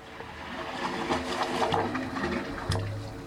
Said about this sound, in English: On a peninsula in San Francisco Bay sits the wave organ. It's an acoustic sculpture. As the waves roll ashore, the organ's 25 pipes create these musical tones.